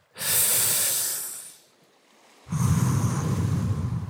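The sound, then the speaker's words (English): Ocean waves wash ashore in two broad, hissing surges, separated by a short lull; the second wave rolls in with a deeper rumble and sustains to the end. No one speaks. “Just breathe for a while. Just follow the waves.”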